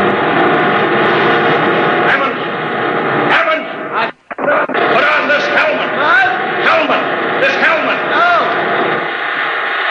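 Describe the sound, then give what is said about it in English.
A loud, steady roar of the giant rotors that drive a moving road fills the scene, broken by one brief dip midway, with voices and what sound like dog barks rising over the din. “You can't hear without an anti-noise filter.”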